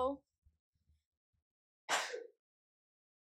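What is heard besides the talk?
a person sneezing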